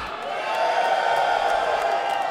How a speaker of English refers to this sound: Give yourselves a huge round of applause for coming out today. And get ready for a no-holds-barred takedown of Busted Open Radio and the man who made it all possible.